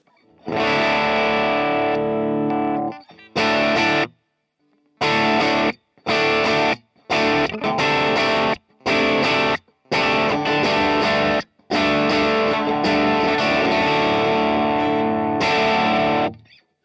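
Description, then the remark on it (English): Electric guitar through a boosted Marshall amp profile with reverb and delay: a crunchy, overdriven sustained chord, then a series of short, choppy stabs with silent gaps, ending on a longer ringing chord. Loud, no talking. “We've got the Marshall with a boost.”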